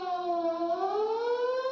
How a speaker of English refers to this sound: What if a warning siren sounds? What should you do?